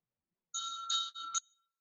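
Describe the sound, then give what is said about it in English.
A small meditation bell rings alone with a bright metallic tone, struck several times in quick succession over about a second before fading out fairly softly. “So thoughts, emotion, feeling arise just like the sound of the bell, just like the breath.”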